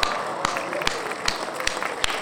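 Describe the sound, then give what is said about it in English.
A crowd cheering sound effect played to celebrate Timmy Schaller's goal for the Canucks, making it 4-2: a steady, dense wash of crowd noise punctuated by a handful of sharp, scattered claps, lasting about two seconds at moderate volume. “Do we have the crowd effect on here? Oh, we do.”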